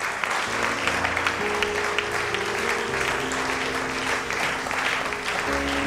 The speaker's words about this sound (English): Give the Lord a clap.